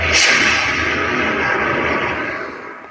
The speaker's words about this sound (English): Or a jet fighter flying by.